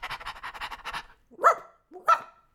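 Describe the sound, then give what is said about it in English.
A man's voice imitates a dog, starting with quick rhythmic panting breaths and ending with two loud, separate barks, with no other talking. “Bow wow wow and woof woof woof and this is how I talk.”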